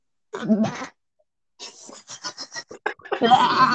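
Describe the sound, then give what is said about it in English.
A goat bleats loudly with a wavering, nasal cry. After a short pause comes a stuttering run of quick bleats, then another long, harsh bleat. “Wait, hold on, hold on, hold on. Goats.”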